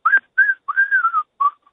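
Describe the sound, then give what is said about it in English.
A short whistled theme-song melody of four clear, bright phrases, the longest one sliding gently downward, fairly loud with no talking underneath. “Like the theme song is always like a whistle, like.”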